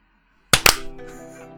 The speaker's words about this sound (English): All right. No more clapping. I will fire you if you clap again.